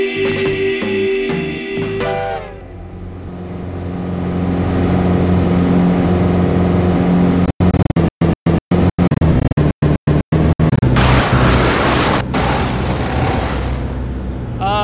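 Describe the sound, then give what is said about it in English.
After a brief musical tone, a loud engine roars, then sputters and cuts out in a rapid series of stutters before rumbling on in a harsh, noisy drone, as one of the engines carrying passengers is lost. “It seems as though we have lost one of our engines.”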